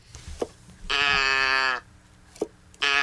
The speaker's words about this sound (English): It's a cow. It's one of those things you turn upside down and then it makes a noise.